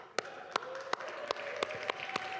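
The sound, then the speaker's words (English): An audience cheers for God's word with steady, rhythmic clapping as they open to Luke chapter 8, about seven sharp claps spaced evenly over a couple of seconds, over a faint sustained tone and low background hum. No voices stand out. “you know, and you're welcome to cheer. I always cheer for God's word.”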